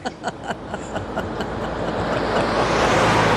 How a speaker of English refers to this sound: Truck going by.